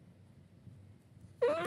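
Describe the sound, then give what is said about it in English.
A domestic cat gives a single loud meow near the end, rising in pitch, after a stretch of quiet low background rumble. “Say hi to the people. Come on, meow meow.”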